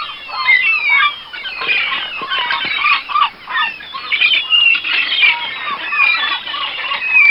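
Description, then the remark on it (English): A flock of seagulls squawking and crying over one another, a dense, continuous chorus of harsh calls that stays loud throughout, with no talking. “Well, anybody who's been to the shore knows absolutely that's a seagull.”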